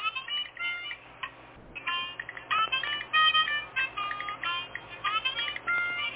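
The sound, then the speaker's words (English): A bright, harmonica-like ringtone melody plays in quick repeating phrases, loud, with a thin telephone-band quality and no talking over it. “Y'all like that little ringtone? You like that little harmonica?”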